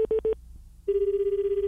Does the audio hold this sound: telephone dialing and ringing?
yes